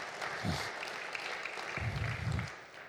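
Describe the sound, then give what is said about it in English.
A church audience applauds the living God: dense, steady clapping from many hands fills the whole clip, with a few low vocal bursts, like shouts or cheers, rising through it. “Let's applaud the living God for that.”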